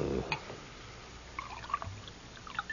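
Liquid is poured into a glass in a short, quiet trickle with a few soft splashes and clinks. No one speaks.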